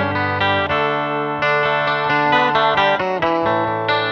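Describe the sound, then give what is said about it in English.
Clean, chimey twelve-string guitar through a Strymon effects pedal, strumming bright ringing chords that change roughly every half second, shimmering and steady in volume with no voices. “I have this Strymon was still on. You can hear like it gets nice and clean and chimey.”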